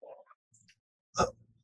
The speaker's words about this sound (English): Good, Gesundheit.